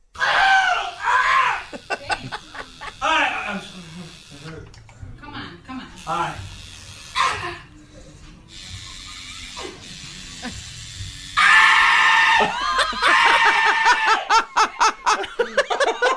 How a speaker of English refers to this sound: It's a great scream. You gotta save that scream.